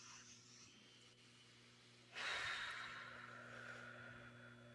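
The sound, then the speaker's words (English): A soft, drawn-in breath followed by a long, steady exhale that starts midway and slowly trails off. It's quiet, with a faint low hum underneath and no talking. “So like even right now, we can all take a breath, just.”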